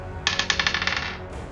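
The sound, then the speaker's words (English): Dice clatter across a hard table in an apartment in Los Angeles in a quick burst of about a dozen bright, rattling clicks that tumble rapidly and then stop, with no talking. “Where I have so little space to roll things in my weird apartment here in LA.”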